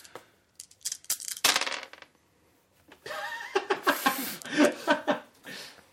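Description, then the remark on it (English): Several quick, hard clicks and clatters of dice rolled to hit in a tabletop game, tumbling across a tabletop fairly loud, followed after a short pause by people laughing and chuckling. “I think you rolled one die too many.”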